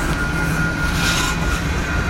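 A long train rolls past in a loud, steady rumble, with a constant mechanical drone and a faint high whine holding through the whole stretch, blocking someone's way home from work. No one speaks.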